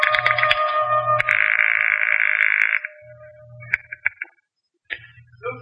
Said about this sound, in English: So, with nothing more to lose than another millimeter off the tip of my index finger, I went back to dialing.